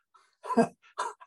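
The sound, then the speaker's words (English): A sudden sneeze bursts out as a loud, harsh, breathy blast, followed by a shorter, softer burst and a faint trailing sniff. “Bless you.”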